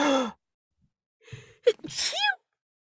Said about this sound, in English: Okay. That was the tiniest sneeze I've ever heard in my I'm life. trying to internalize it.